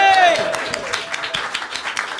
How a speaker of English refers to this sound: A round of applause.